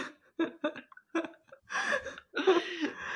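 Someone burps loudly into the microphone, a few short guttural croaks followed by two longer, rough, drawn-out belches, with laughter-like breaths in between.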